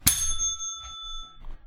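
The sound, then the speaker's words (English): A hand bell is struck once, giving a bright, clear ding that rings on and slowly fades over about a second. It is heard alone, with no voices. “Before we go any further, I have a bell. Here's what it sounds like.”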